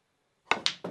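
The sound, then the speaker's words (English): A snooker ball rattles in the pocket: three quick, hard clacks in an uneven rhythm, each ringing briefly before fading, following a moment of silence with no voices. “Oh, jingles and jangles in the pocket.”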